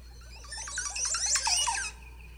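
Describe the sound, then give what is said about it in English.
A Montezuma oropendola call: a quick burst of gurgling, squeaky, liquid notes that jump up and down in pitch, fairly loud, lasting about a second and a half with no voices. “It's like, it sounds like someone ripping the tape out of your car stereo in the 80s.”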